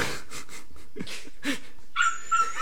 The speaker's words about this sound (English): Oh my gosh, take your fucking dog. Get him the fuck out of here.